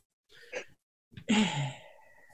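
One sneeze: a short, breathy intake followed by a sudden, loud explosive burst with a voiced edge that trails off over about a second. No one speaks.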